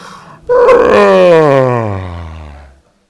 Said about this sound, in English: The story of Advent frees us to look at all that's going on in the American political situation and yawn. Okay? Let's all do a quick Advent yawn. Come on.